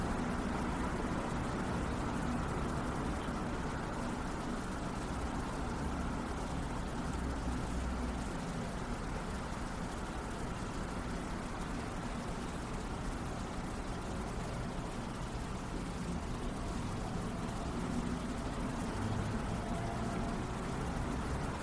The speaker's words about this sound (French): Le temps et les voitures passent. On se laisse être témoin de ça. Parfois, les voitures s'arrêtent.